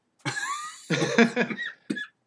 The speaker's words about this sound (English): Oh dear, there's the coughing.